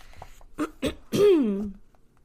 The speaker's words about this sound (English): Okay, I have really bad allergies, you guys, so sorry about me clearing my throat and, like, having a dry voice.